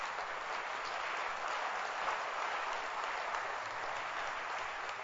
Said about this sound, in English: Clap your hands for grace. Grace. Keep clapping your hands.